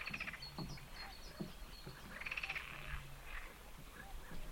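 A chorus of frogs croaking in rapid, pulsing trills that rise and fade in overlapping bursts, with softer calls and a few low knocks in the background, no voices present.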